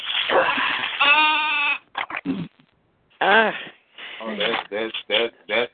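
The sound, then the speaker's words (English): Someone imitates a sheep with a string of loud, wavering bleats, some drawn out and some short and choppy, separated by brief pauses. “That's the one that's making the sheep noise.”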